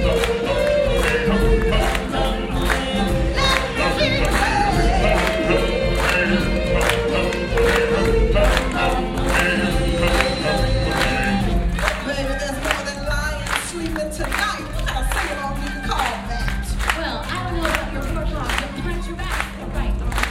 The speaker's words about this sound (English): Let's have a party. Come on, everybody. Clap and sing along.